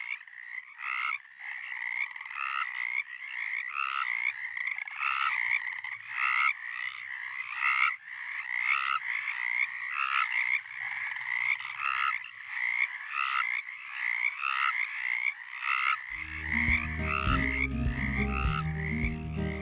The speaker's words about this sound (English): I leave you with Jeff's recording of Pacific chorus frogs.